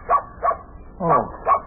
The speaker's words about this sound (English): Oh, it's only your dog, Bunny.